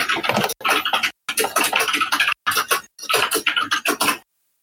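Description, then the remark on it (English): Rapid keyboard typing by a woman working in the background of a shared room, in four dense bursts of crisp, clattering keystrokes, separated by brief pauses, fairly loud and with no voices. “Someone's typing.”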